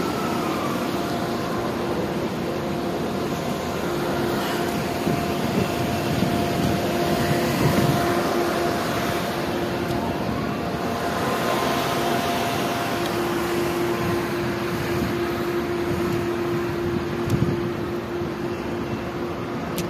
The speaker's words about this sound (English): That is 1, 2, 3 helicopters and the sound of sirens. 1, 2, 3, 4 helicopters and the sound of sirens. And again, the helicopter is still patrolling over these skyscrapers that I'm looking at as I'm standing at track 6B